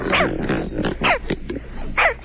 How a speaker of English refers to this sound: It's a large water bird, one of the largest birds in North America, with white plumage, a long orange fish-scooping bill